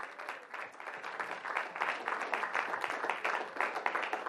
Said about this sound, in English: Praise the Lord Jesus. Give them a nice round of applause.